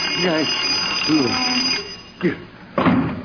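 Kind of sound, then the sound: household object, alarm clock ringing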